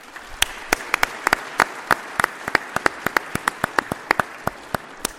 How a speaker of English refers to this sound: I also see those coming from Pharaoh's country, from Egypt. So that round of applause was for you as well.